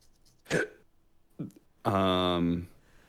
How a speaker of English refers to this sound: we'll just kind of, excuse me, getting a little hiccups.